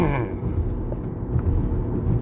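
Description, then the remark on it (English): A truck's engine rumbles steadily as it rolls slowly into a truck yard, a deep continuous drone with faint higher whines over it and no clear speech. “I am pulling into my truck yard right now so I can start my day.”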